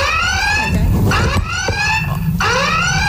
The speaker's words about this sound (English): So, really shocked at the sirens. So, was that noise in the background the noise of the sirens? No. No. Do you want to hear the sirens?